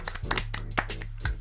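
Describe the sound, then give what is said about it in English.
Hand clapping for a singer, about six sharp claps at a steady, unhurried rhythm, fairly loud over a low constant hum, with no talking. “Let's clap it up for ….”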